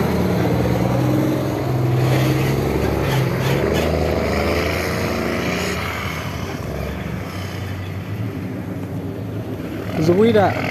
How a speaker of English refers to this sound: There's this car driving by. I just saw a car driving by. It looks like they were Americans. It was a black guy and a white guy driving a truck. And I know they're Americans because of their plates.